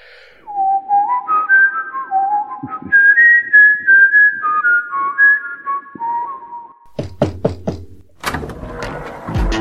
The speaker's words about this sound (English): Probably the whistle's better. Okay, let me just blow the whistle and see if we get a knock at the door.